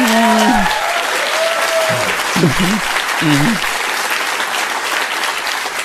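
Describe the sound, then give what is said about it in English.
A large audience claps steadily and loudly for several seconds, applauding a call for Americans to take Afghan refugees into their homes, a dense wash of applause with a few scattered voices and whoops rising above it. “And I'm sure everyone who just clapped is thinking the same thing.”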